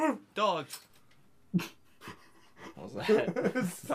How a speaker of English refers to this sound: Dog. What was that?